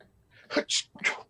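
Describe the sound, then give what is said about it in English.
A voice imitates a sneeze: a breathy intake followed by two sharp, hissy bursts, fairly loud, with no other talk in between. “So when they sneeze, you just got to duck because you don't know which hole it's coming out of.”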